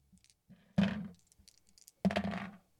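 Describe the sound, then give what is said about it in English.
Percentage dice clatter across a tabletop in two short, rattling bursts, each tumbling noisily for about half a second before settling on a roll of 13. Fairly loud, with no talking. “Here we go, and then we're gonna roll my percentage dice.”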